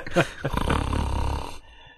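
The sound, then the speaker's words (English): A single raspy snore, recorded with a lavalier microphone jammed right up to the sleeper's nose: a short intake followed by a rough, rumbling breath lasting about a second, then quiet. “It was pretty quiet snoring, too.”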